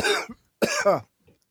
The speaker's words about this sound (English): Did he start sweating from coughing? Yeah, everything makes me sweat.